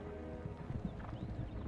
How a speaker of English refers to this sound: I love that shot there of Viggo. His performance, but with that huge crowd of horses galloping down the hill behind him.